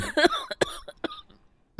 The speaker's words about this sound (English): We'll have to cut that cough out. That cough is karma.